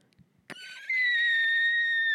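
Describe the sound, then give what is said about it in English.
A voice imitates a sonic brainwave sound: a sudden onset settling into a loud, sustained high-pitched warbling tone with bright overtones, steady and wavering slightly for over a second. “You send out this like sonic brainwave sound.”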